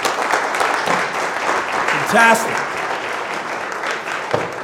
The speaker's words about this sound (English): Can we just give a big round of applause to our Pathfinders?